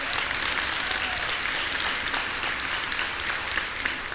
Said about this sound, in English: And so you can keep applauding, but I know you're really applauding God when you do that.